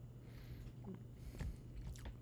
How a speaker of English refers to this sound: I was chewing.